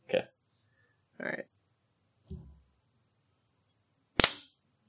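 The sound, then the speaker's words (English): A single loud, sharp hand clap rings out near the end, preceded by a few shorter, duller bursts of sound separated by quiet gaps; the clap is made to sync a recording. “Okay, so we should clap.”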